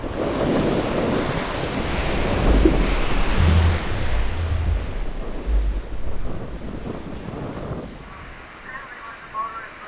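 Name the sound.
ocean waves crashing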